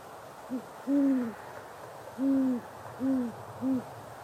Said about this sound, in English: So it's five notes as opposed to the multiple notes of the barred owl.